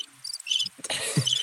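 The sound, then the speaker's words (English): A cricket-chirping sound effect: crickets chirp steadily in a quiet night-like ambience, their high trilling pulses repeating, with a soft rustle or bump partway through and no voices. “No, that joke got crickets.”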